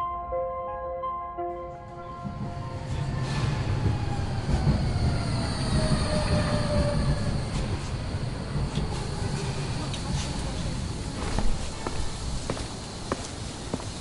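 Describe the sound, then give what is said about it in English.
A tram rumbles steadily along the rails, wheels squealing and ringing in long drawn-out tones, after a brief tonal chime at the start; no one speaks. “Take the tram to the industrial district.”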